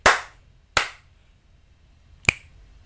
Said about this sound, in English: slaps on the microphone. Did I do that like a lot? That's like half the time. Try it again. That wasn't even that was a clap. A shitty slap.